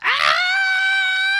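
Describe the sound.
A man lets out a loud, high-pitched scream, imitating the lone witness who heard a plane crash: a raspy burst that settles into one steady, piercing shriek held for over a second, with no other sounds.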